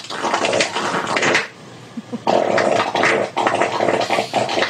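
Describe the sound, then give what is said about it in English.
A long, loud, raspy fart whose pitch wobbles up and down, breaking off briefly and then returning for a second sputtering stretch with the same rising and falling tone. “It's so the pitch will go up and down, you know.”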